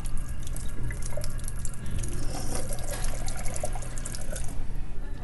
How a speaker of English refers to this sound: Oh, thank God, a drinking fountain. Hold on a second.